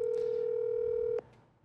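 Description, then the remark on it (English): A phone line rings out with one steady electronic ringback tone lasting about a second, then cuts off, leaving faint background noise and no answer. “And this is her moment, and she won't answer. And I told her, be ready. Be by the phone.”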